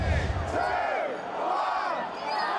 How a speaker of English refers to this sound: Britain's 47-year relationship with the European Union officially ended at 11 p.m. Friday night to shouts of jubilation by Brexit supporters.